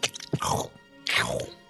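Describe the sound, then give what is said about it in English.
A sound effect of two wet bursts of crunching and tearing flesh, like something biting and ripping apart meat, each lasting about half a second with a brief pause between them. “So, you creep into the graveyard and you see a large, shadowy form kind of squatting on the ground, and you hear the sound of crunching and tearing.”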